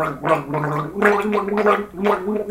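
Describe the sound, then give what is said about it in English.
Someone gargles a Christmas tune, the wet, bubbling voice holding three sustained, steady-pitched phrases with short breaks between them, loud and alone with no talking. “Oh, you really do choke, don't you?”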